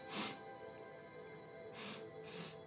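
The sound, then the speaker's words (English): A person imitates a white wolf sniffing with three sharp, breathy nasal sniffs: one at the start, then a quick pair near the end. They sound moderately loud, with no talking. “At this point, you see the white wolf sniff.”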